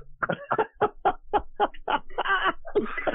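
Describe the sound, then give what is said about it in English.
A pet bird lets out a quick run of about ten squawky, laugh-like calls in a steady rhythm, fairly loud, with no talking. “Even my bird is laughing.”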